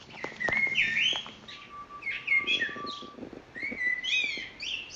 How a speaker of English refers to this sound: So I definitely can hear melodic structures in the birdsong.